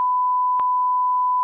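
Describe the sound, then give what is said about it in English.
A steady, unbroken censor bleep tone runs the whole way through, fairly loud and pure, with a small click where it cuts in and again midway; no voices come through. “That was going to need to be beeped. No, you have to bleep that whole thing.”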